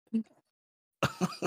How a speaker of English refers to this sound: I'm going to be coughing for like a minute. Okay. 1 second.